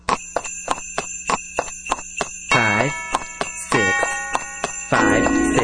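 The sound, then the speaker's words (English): Sleigh bells jingle in a steady, quick rhythm alongside sharp, evenly spaced clicks during a take of a song recording, fairly loud, with a few wavering, squealing tones rising over the beat in short bursts. “Just hear those sleigh bells jingling, ring, ting, tingling, ting.”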